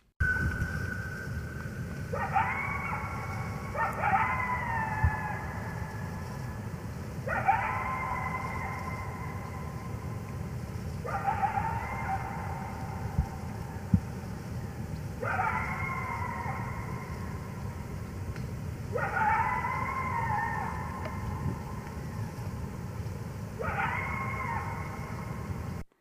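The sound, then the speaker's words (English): A group of coyotes howls and yips in repeated bursts, with high wavering cries falling and rising about every few seconds over a steady low rumble of background noise. “So let's take a listen to the coyote.”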